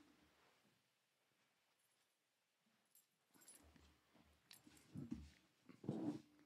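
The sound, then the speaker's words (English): A dog whimpers and grumbles in a studio, starting faint and then rising into a couple of louder, throaty whines near the end, with no one talking. “My dog's in the studio today.”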